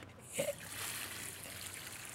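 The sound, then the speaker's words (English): Water is poured onto a rock, starting with a brief splash and then settling into a steady trickling hiss that runs continuously to the end, with no voices. “See, there with the rock, then you add the water.”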